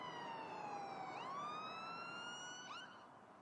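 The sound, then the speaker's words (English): An emergency vehicle siren wails loudly and steadily, its rich, harmonic tone sliding down and back up in long sweeps, with a low rumble of traffic beneath and no voices. “And then I remember hearing the sirens.”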